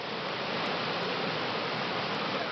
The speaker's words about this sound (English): And another that captures the roar of a Turkish waterfall.